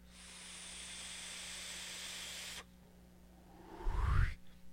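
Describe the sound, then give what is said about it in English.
A steady, airy hiss of air being drawn through a vape mod set at 0.1 on a single 21700 battery lasts a couple of seconds and cuts off, followed by a breathy whoosh with a low rumble. “I really enjoy the airflow. This is some smooth airflow.”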